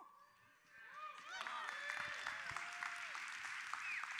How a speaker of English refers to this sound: You're clapping for her, right?